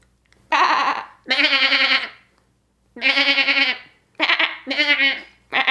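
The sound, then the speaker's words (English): A person imitates a goat or sheep, letting out four or five loud, wavering bleats in separate bursts with short pauses between. “I think the only animal noise I can make convincingly is I do a decent like goat slash sheep.”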